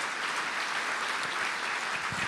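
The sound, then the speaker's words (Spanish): Steady applause from an audience during a talk about reading the Bible, a dense crackle of many hands clapping at once, holding an even, fairly loud level for the full couple of seconds with no voices over it. “Gracias por tu aplauso.”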